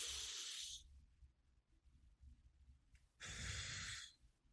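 Two airy breaths with a quiet pause between them from a person demonstrating a breathing exercise with one hand on the chest and one on the stomach: a slow inhale through the nose, then a soft hissing exhale through pursed lips. No talking.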